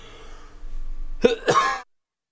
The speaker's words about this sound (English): Really sorry about that. Maybe I'll ad-lib a noise into the cough that's not too crazy.